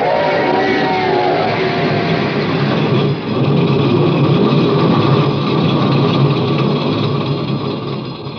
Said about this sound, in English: The starter worked at last. I managed to back up.